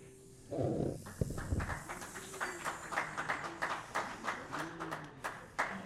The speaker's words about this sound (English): Hold the applause, hold the applause. I listened just now to your heartwarming reception.